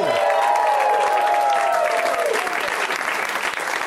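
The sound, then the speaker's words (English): A loud, sustained burst of audience applause and ovation at a live show, called for by the host, with dense, steady clapping, joined by a few rising whoops and cheers near the start that fade as the clapping carries on. “That was an okay round of applause, but can we do one more room-uniting burst of ovation? Get it in! Go!”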